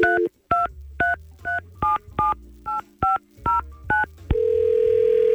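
A quick run of about nine touch-tone dialing beeps in a steady rhythm, each a short two-pitch blip, followed by a continuous steady line tone as a telephone call is placed. No one speaks.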